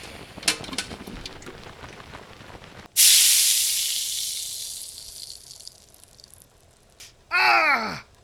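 Crackling gives way to a sudden loud burst of steam hiss as a bucket of water is thrown on a fire to put it out, the sizzle slowly fading over several seconds before a short, descending whining tone at the end.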